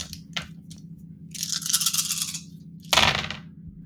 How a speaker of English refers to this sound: All right, let's just see if the dice roll are too noisy. Hold on a minute.